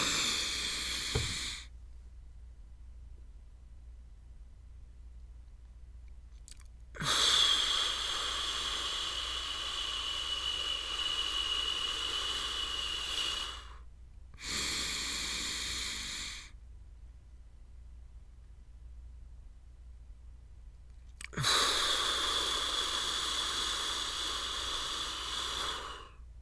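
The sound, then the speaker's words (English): Airy 4-7-8 breathing: long hissing inhales through the nose and slow, pursed-lip exhales through the mouth, separated by stretches of silence while the breath is held. Two slow cycles repeat with no talking. “The breathing in part comes in through your nose. The breathing out part comes out through your mouth in a pursed lip pattern.”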